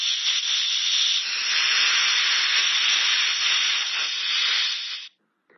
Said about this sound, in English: That night, after Isha Salah, Nasir went into Uncle Yaqub's yard and let all the air out of his car's tires.